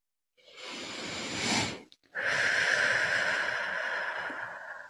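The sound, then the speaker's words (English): One long, slow deep breath in, a brief pause, then a longer, airy breath out with a faint whistling edge, taken as part of a guided breathing exercise. The breathing is steady and fairly loud, with no talking. “Start by taking a deep breath in, deep breath out. And do that one more time.”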